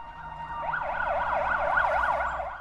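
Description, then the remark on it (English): An ambulance siren yelps in quick rising and falling sweeps, fading in and holding steady and fairly loud over a low traffic rumble, with no one speaking. “waited in the ambulance with me while they injected me with stuff to help with the pain.”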